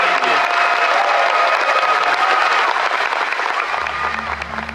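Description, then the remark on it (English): A loud, sustained round of applause for the Frontier team making the game Elite Dangerous fills the whole clip, dense clapping with some cheering mixed in, tapering slightly toward the end as a low hum enters. “And also to have a round of applause to these guys and to everyone else who has done this.”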